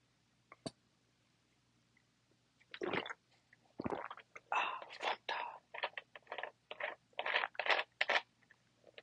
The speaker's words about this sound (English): Hold on, gotta get a sip of this soda, getting a little parch.